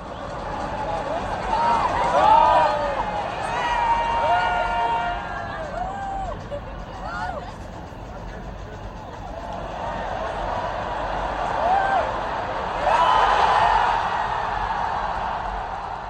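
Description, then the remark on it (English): A big football stadium crowd roars continuously during a run by Messi, with whistles and shouts riding on top, surging loudly around the start and again near the end, recorded from within the stands. “This is how it sounded from someone recording it in the stands.”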